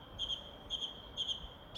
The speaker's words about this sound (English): this is quite therapeutic, having no aeroplanes in the sky, no traffic on the road, and, you know, I can listen to this bird song that's actually really something that's quite special, that this might be something worth fighting for in the future.